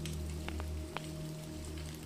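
Steady rain patters on a surface with a low constant hum beneath, a few sharper drops or taps standing out now and then, soft and continuous throughout.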